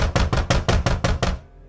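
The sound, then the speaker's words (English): Loud pounding on a wooden cabin door: about eight heavy, evenly spaced blows in quick succession, then sudden quiet with only a faint low rumble left. “I felt like my daughter and I were the only people for thousands of miles, until someone started pounding on the cabin door.”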